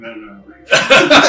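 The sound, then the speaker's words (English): A brief voiced sound gives way to a loud fit of harsh, raspy coughing, about three rough bursts in quick succession. “This is a really bad cough there.”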